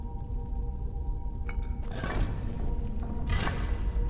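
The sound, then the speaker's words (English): A mechanical door mechanism grinds and rumbles steadily with a low hum as a door opens after a keyhole is activated, broken by a sharp click and two brighter scraping, clanking bursts partway through. No one speaks. “Well, let's grab a cup of coffee as this door opens.”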